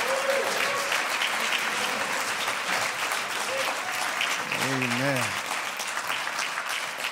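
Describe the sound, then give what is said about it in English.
Sustained, loud applause from a large crowd giving the Lord a hand clap of praise fills the whole stretch, dense and steady, with a few voices calling out briefly over the clapping. “I said give the Lord a hand clap of praise.”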